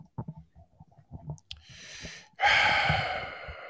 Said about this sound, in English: You all right? You're breathing a little heavy.